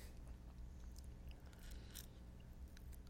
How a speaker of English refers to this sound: What are you chewing? Pizza. It's pizza, okay? Oh, I'm eating pizza. That's what's going on. You're eating, and then you're just throwing these curveballs at me so you can eat your pizza.